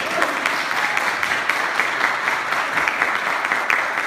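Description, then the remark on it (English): A church gathering applauds as a guest preacher and teacher is introduced, a dense wash of many hands clapping at once, sustained and fairly loud throughout with no voices standing out. “Yeah, you can clap enough for that.”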